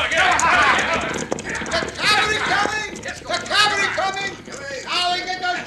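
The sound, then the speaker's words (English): Cavalry horses' hooves clatter in a fast, steady clip-clop, drawing nearer, beneath loud overlapping shouts and voices that fill most of the moment. “The cavalry coming!”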